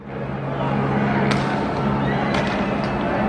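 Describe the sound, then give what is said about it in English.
A large protesting crowd being dispersed by police moving in and firing rounds: a dense, steady roar of many voices with a low droning hum underneath, broken by a couple of sharp bangs or thuds partway through. “This one we're going to see cops an overhead shot as they move in and try to disperse the crowds protesting.”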